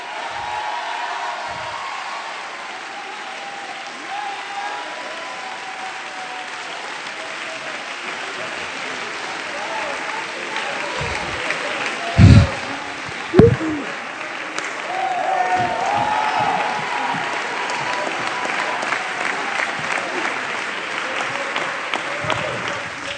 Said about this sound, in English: Come on, if you have faith, you ought to get on your feet and clap your hands and shout.